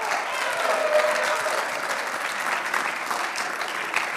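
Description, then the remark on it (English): A crowd at a church gathering claps steadily and continuously as a speaker comes up to the front, a dense, even patter of many hands with no breaks, holding at a fairly loud level throughout. “Come on, keep clapping.”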